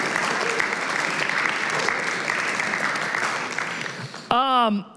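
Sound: audience round of applause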